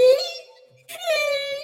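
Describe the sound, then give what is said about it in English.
A voice imitates a whale call with two long, tonal moaning wails, the first sliding and fading, then a brief breathy gap before a second sustained, wavering moan, fairly loud with rich harmonics. “You sound like a whale. And you speak well. That's a good whale impression.”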